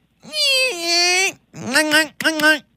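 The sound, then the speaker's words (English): A voice imitates a firework: one long, high whistling tone that steps down in pitch, then two shorter wavering bursts. The imitation is fairly loud and has no other talk. “And there's one of the fireworks. It kind of goes like.”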